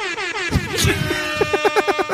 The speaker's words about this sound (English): Air horn is never not great. It just sounds like somebody, it's like the soul of an asshole. Like, just freely running around, like, pew, pew, pew. Like, it's just wonderful.